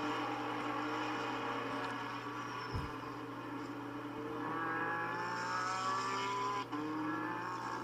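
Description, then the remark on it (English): Several race car engines roar loudly and continuously, their pitch climbing as they accelerate together out of the first corner and head down towards Riverside, with Brian Lynn leading, and no voices over the din. “Well, don't you know how they started out the first corner here, but I'm pretty certain Brian Lynn is our leader as they head down towards Riverside.”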